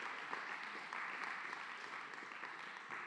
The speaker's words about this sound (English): You guys can clap for that, right?